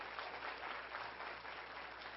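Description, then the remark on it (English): An audience applauds steadily, giving a hand clap of thanks to God: dense overlapping hand claps at moderate volume with no voices over them, a continuous wash of clapping. “If you believe it, give God a hand clap of thanks.”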